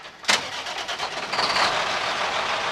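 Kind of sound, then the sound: vehicle, truck engine running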